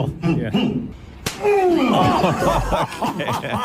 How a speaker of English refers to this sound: Oh my God! That's such a good sound. Do I win? Kevin was on the Tonight Show last night doing a breakdown of his fears that he had doing the tortilla challenge with Dwayne Johnson. So you guys did the tortilla slap challenge.